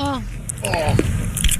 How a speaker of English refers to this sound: Let's listen in to what Scary chewing sounds like.